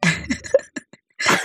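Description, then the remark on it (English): A stifled, held-back cough comes through as a few short, muffled bursts, breathy, ending in a stronger rough exhalation, with some light laughter mixed in. “I'm holding back my cough.”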